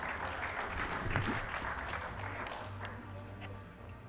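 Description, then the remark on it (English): An audience at a convention applauds steadily for about four seconds, a dense, even wash of clapping at moderate volume with no voices over it. “And then when it's all said and done, if you make a decision to applaud, that the applause will be for God's grace and not my message.”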